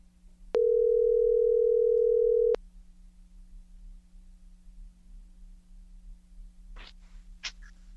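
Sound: telephone dial tone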